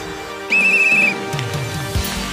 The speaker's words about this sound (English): All right, you're gonna go on my whistle, okay? Okay. On your mark.